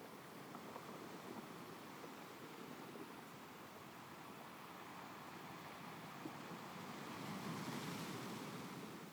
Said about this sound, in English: I want you to see yourself standing on the beach, and those waves crashing at your feet. As they crash in front of you, they slowly reach up, receding a little bit of the sand from under your feet and pulling back out to the ocean.